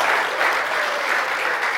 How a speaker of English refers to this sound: I want to invite our pastors to join me on the stage right now. Can we give a warm round of applause? Like, you're so excited to see your pastors up on this stage.